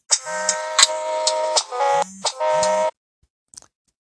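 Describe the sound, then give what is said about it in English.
A phone ringtone from an incoming call plays loudly for about three seconds, a bright, sustained electronic tone with a steady buzzing pulse, then cuts off abruptly, followed by a brief faint tap. “Sorry, I have to stop because I had a phone call come in again.”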